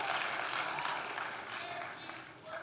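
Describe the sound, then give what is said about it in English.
An audience claps steadily, a dense wash of many hands applauding at an even loudness throughout, easing slightly toward the end before picking up again. “Christians believe, we can clap.”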